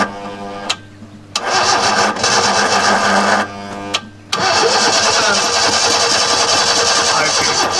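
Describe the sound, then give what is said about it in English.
A car engine cranks repeatedly in rough, grinding bursts, stalling and retrying several times before catching into a loud, uneven running rumble with no voices. “If you never had a car do that sound to you, you're not in America.”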